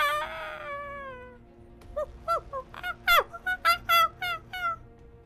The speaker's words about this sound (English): You're in a forest. Huge trees, lianas hang down. You hear the sounds of birds.